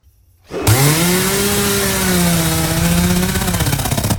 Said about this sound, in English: And there it is. There's no denying the power of the chainsaw. It's menacing. It's destructive. It is intimidating as hell.